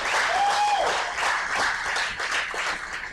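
An audience claps together in a dense, steady burst of applause that stays loud throughout, with a brief high whistle-like tone near the start and no speech.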